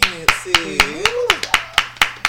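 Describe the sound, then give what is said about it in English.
Hands clap in a steady, even beat, about nine sharp claps in a couple of seconds, while a voice makes wavering, wordless sounds underneath. “Why y'all don't clap when I clap?”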